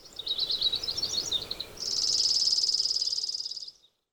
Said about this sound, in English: And what Roger doesn't know is that I also included a sound in tribute to him, and it is the sound of a sparrow.